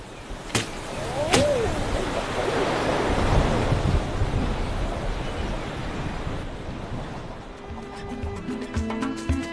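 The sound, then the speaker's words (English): Blustery wind and crashing ocean surf of an approaching storm roar together in a loud, steady wash that swells and recedes, joined near the end by a faint low droning hum. “Anyway, let's get this lot packed away before the storm really closes in.”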